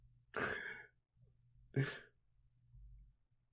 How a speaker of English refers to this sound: Oh, no, I need to yawn. I'm not going to do it in front of you so you don't yawn.